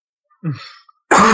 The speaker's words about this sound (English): I'm going to cough.